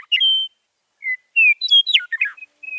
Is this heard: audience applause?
no